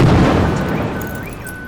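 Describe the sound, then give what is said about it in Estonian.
A loud bomb explosion rumbles from the start, its deep roar lingering and slowly fading, with faint tonal sounds drifting above the noise. “Alles mõni nädal pärast turumüümise otsust lasti pommiga õhku üks sealiha müüja ja kolme lapse isa, kes oli keeldunud oma koha eest maksmisest.”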